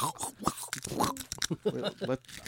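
Crisp crunching of crackers eaten with pickle juice, a quick irregular series of dry crackles and bites with faint murmuring voices in the background.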